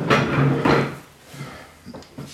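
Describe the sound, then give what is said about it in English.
A chair scrapes and drags across the floor in two quick, loud pulls, followed by a few softer knocks and bumps as it settles into place. “Let me scoot over here. You want to grab a chair?”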